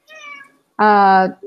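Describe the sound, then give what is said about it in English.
A cat meows twice, first a softer, shorter call, then a loud, drawn-out meow, followed by a brief faint sound at the end. “Our cat here, he will climb on it, and he's not afraid.”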